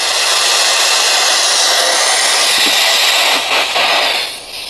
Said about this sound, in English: we crank that thing, and it is fucking loud. So Jay's doing a wonderful job by kind of muting some of the very jarring static sound of it